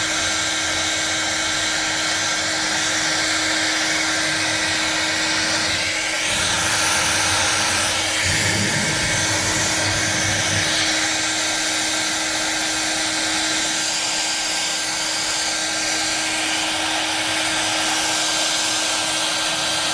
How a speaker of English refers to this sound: And we're going to help it here a little bit with a hairdryer to get some of these wrinkles out. You'll see some of the wrinkles go away if the balloon doesn't move out of the way.